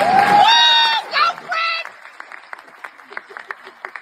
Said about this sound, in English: You can clap for that.